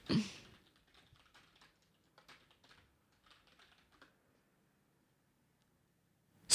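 Quick, light clicks of typing a search into a website on a computer keyboard in uneven bursts over a few seconds, fairly quiet, with a louder thump at the start and end.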